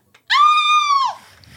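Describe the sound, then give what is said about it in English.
A person lets out one loud, high-pitched imitation scream, held steady for nearly a second before its pitch drops away at the end, followed by faint rustling. “I think that actually worked very well as a scream.”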